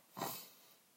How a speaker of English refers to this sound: I'm going to try not to put the loud breathing on the microphone anymore.